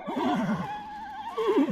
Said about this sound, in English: It's an early summer morning, and an enslaved Maryland teenager named Frederick is out in the stables, feeding horses.